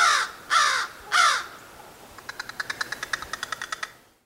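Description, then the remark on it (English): Three loud, harsh crow caws in a row, followed by a quick series of about a dozen short, clipped rattling notes that end abruptly. No one speaks. “So it seems that crows have something like a sense of humor.”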